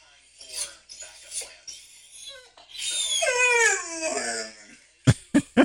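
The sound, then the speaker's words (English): A Labrador left at home whines at the kitchen door after its owner leaves: several short, high whimpers, then a long, wavering, howl-like whine that slides up and down, followed by a few sharp scraping bursts. No one speaks. “That's my lab. He can't stand it when I leave.”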